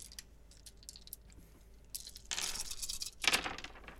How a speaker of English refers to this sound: Well, we have one cocked dice. Fell off the table.